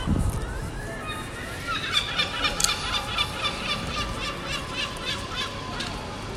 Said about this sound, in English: Aren't seagulls noisy? Obviously, because I live quite close to the sea, we get them at the crack of dawn as well. Whereas under normal circumstances, the dawn chorus sounds quite nice. Doesn't necessarily sound so nice when there's seagulls involved